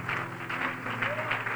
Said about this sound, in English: And I sure do honor your pastor and his wife. Why don't we give them a good hand clap of praise this morning?